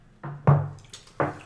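Glasses clink together in a toast: three or four short, sharp taps spread unevenly over a second and a half, with a faint dull knock among them and no talking.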